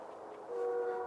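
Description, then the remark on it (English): A distant train sounds a long, steady horn blast, its droning tones swelling slightly halfway through and holding at a moderate level, with no voices present. “That fucking train. Quite a ways away by now. Why is it so loud?”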